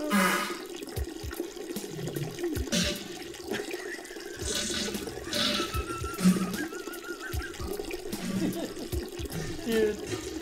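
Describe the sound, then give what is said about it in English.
Shower water runs steadily for about ten seconds, a hissing spray broken by occasional splashes and soft thuds as the stream shifts. “Imagine being stuck in that shower.”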